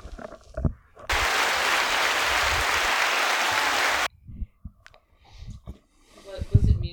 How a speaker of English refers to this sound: No, I was giving him the applause. There's buttons that do applause?